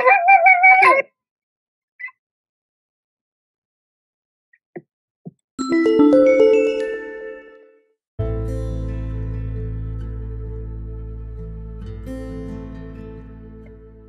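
A dog barks once near the start, then after a few faint clicks a yelping burst rises into a long, loud, sustained howl that carries on to the end.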